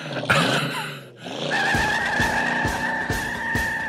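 A car revs and pulls away with a loud, sustained tire squeal, the engine roaring close by under a steady high-pitched screech that lasts several seconds.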